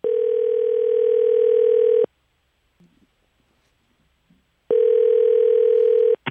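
A steady, buzzy telephone tone from a phone call to a fan sounds loudly for about two seconds, cuts out for a quiet pause broken by faint clicks, then returns for another long stretch.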